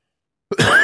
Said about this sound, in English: God damn you. You cursed me with the cough. That wasn't coming on.